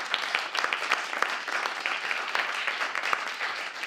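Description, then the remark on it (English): An audience applauds steadily for the evening's panel of guests, many hands clapping in a dense, crackling wash with sharp individual claps poking through. Moderately loud and even throughout, with no voices. “So do give them a round of applause before we...”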